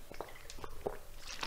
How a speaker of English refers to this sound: as I get some water in me